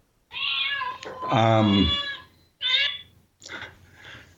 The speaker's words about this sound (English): Sorry about that. I don't know. I've got a cat ringtone on my phone. It just started ringing.